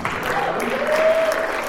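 Steady clapping from a group fills the moment, a dense, even wash of applause that holds at a fairly loud level throughout, with no talking over it.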